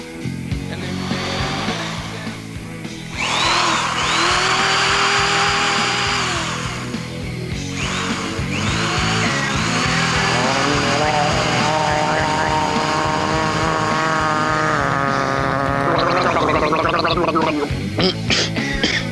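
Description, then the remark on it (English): A power sander or drill whirs loudly, a continuous high whine that rises and falls in pitch, briefly cutting out and restarting, with some muffled vocal sounds underneath. “He's down there sanding his teeth.”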